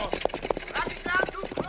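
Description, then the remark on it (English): Rapid hooves of several horses clip-clop in a quick, steady rhythm, loud, while voices call out over the galloping as riders try to grab the reins and slow the horses down. “Do not yell at the horses, senor. We'll only excite them more.”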